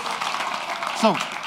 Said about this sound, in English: Encore, encore. Applaud to that. Come on, that's it.